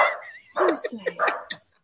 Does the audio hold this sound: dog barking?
yes